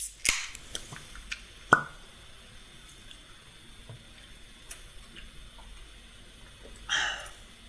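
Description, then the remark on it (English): Bottles of Amstel beer being cracked open: a few sharp metallic clicks and pops, then a short fizzy hiss of escaping gas, with small clinks scattered through otherwise quiet surroundings. “Without further ado, we'll crack these open.”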